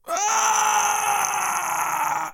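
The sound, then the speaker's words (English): A man screaming in his sleep lets out one long, loud scream lasting a couple of seconds, strained and steady in pitch, with no talking around it. “He screamed.”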